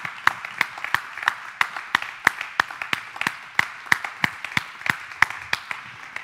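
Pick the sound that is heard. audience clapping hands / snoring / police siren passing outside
audience clapping hands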